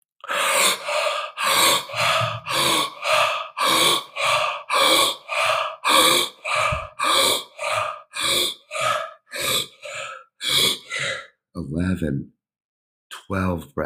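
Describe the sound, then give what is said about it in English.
Loud, deep breathing in and out, breathed as deeply as possible during a guided breathing exercise with counted breaths, repeats in a quick steady rhythm, about twenty forceful breaths over several seconds, followed by a brief voiced sound and a short pause. “Breaths, 13 breaths, breathing super deep.”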